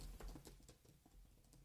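Rapid, irregular clicking of keys on a computer keyboard, a quick run of loud, sharp taps with no voices, set against a low background hum.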